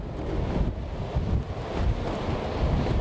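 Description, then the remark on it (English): Strong wind of a gale buffets the microphone, with salty wind and rain, over a continuous roar of surf from a rough, furious sea, loud and unbroken for the whole stretch, with no voices. “Speaking of salt, even the wind, the rain tastes salty today.”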